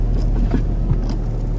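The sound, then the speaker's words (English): A car's engine rumbles low and steady as the car approaches on a road during a snowstorm, holding an even level throughout with faint higher hiss above it and no voices. “Watch out, there's a car coming!”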